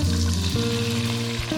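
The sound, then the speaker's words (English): Steady sizzling of spices toasting in a deep frying pan over a medium heat, a continuous hiss that holds for the whole moment, with a sustained musical tone playing underneath. “Put all of the spices into a deep frying pan and toast over a medium heat for a few minutes until fragrant.”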